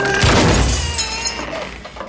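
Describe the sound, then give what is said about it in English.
A heavy crash as a door gives way, followed by glass shattering, with bright ringing shards tinkling and trailing off over about two seconds. No one speaks. “You broke her door.”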